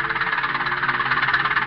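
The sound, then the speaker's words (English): A farm tractor engine chugs steadily and loudly as a man in overalls seated on it mows his fields on a farm in Jefferson County, America; its rapid rhythmic pulsing is continuous, with a rough mechanical rattle and no voices. “Here, too, are the sounds of war, of tractors, machines, and men taking food from the earth for a nation locked in struggle.”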